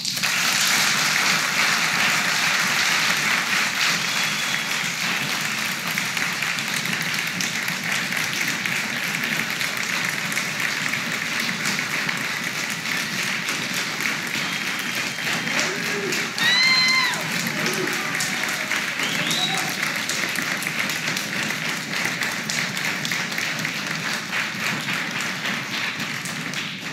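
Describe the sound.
A church audience applauds to show agreement with a church council decision, a steady, dense wash of clapping that holds for the whole stretch, with a few brief voices and cheers rising faintly above it midway.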